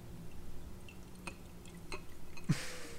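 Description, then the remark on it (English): A drink is poured into a glass quietly, with a few soft drips and taps before a sudden splash that turns into a steady fizzing hiss. “Like pouring a drink into a glass ASMR.”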